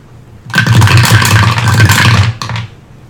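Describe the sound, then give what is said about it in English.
Dice rattle and scrape as they are swept together, a dense clattering for about two seconds, followed by a short, sharp final tumble. No voices. “Gather all your dice.”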